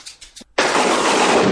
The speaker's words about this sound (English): How about that? That's brilliant. Okay, so if you hear the lightning, uh-huh. It means...